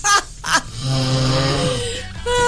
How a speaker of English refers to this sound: No one knew what it was. I just had a snoring sound effect.